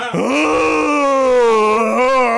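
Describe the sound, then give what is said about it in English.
A human voice mimics a werewolf's howl: one long, loud, sustained wail that swoops up at the start, then holds a steady mid pitch, bending slightly before fading. No other sounds. “He howled.”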